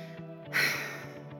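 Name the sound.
heavy breathing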